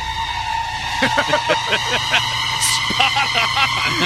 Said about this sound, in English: Customer states, my vehicle sounds like an elephant.